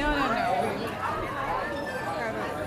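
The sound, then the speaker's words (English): A steady hubbub of crowd chatter at the Santa Monica International Film Festival, many overlapping voices blending into a continuous murmur at an even, moderate loudness, with no single speaker standing out. “Seeing the crowd here.”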